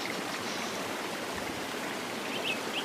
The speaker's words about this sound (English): Some birds for some reason.